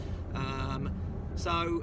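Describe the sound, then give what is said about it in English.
A steady low rumble of road traffic runs throughout, with a passing vehicle's drone rising briefly, and a voice is heard in the foreground over the noise. “So, traffic's picked up now a bit, so I'm going to be heading on into the office.”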